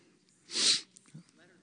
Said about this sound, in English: I've been feeling like I'm going to sneeze for the last like 20 minutes. So if I do sneeze, I apologize.